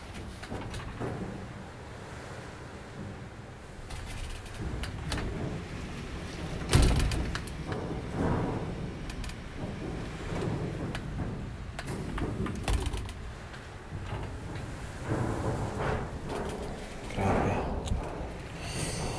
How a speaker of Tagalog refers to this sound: Grabe yung hangin. 2:31 AM. Friend, naririnig mo guys.